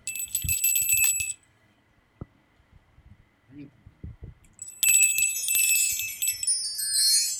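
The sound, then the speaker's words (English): A small bell rings rapidly to signal the next round, in two bright, loud bursts of metallic trilling, one at the start and another after a few quiet seconds with faint low murmurs in between. “Ring the bell, buddy.”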